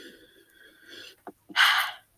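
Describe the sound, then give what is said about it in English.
A deep breath: a long, slightly wheezy draw of air, a couple of small mouth clicks, then a loud, airy rush of breathing. No one speaks. “I love breathing.”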